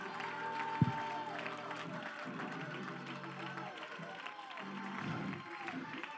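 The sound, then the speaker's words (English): An audience claps hands in worship in a dense, steady wash of applause, with sustained organ chords and scattered voices beneath it, holding a fairly even loudness throughout. “Clap your hands and worship the Lord like you really mean it.”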